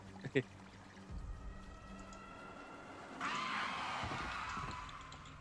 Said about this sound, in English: Water. Very observant.